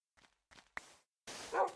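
dog barking

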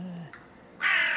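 crow cawing

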